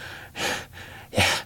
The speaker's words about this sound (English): "He's dead already," the Red Panda said bluntly, turning back to the gangster where he lay gasping. "Aren't you, Case Bermel? You can feel the life draining out of you. No power in this world can save you." Bermel gasped his reply.